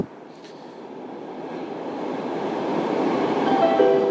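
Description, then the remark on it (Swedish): A steady, low rumble from inside a moving train, gradually growing louder, with faint high squeals of the wheels near the end. No one speaks. “Nästa slussen byter till tunnelbanan.”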